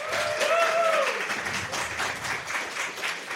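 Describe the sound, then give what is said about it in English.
A crowd claps steadily for a few seconds to vote for 'highs' in a game, a dense wash of many hands, with a brief whistle or cheer rising over the applause near the start. “Now clap right, for disregard lows. Disregard that clap.”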